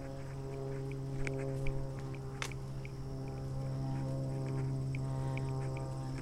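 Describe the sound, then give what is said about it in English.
A steady, low droning hum of an airplane passing overhead holds constant throughout, with faint high chirps and a few small ticks scattered over it. No one speaks. “I hear an airplane.”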